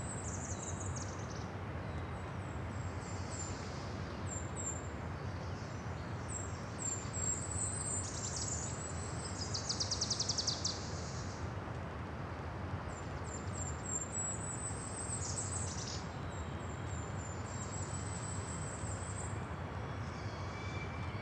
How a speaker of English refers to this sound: Hear that? That harsh cry? It's a peregrine falcon. They use these high cliffs to hunt birds down below along the beach.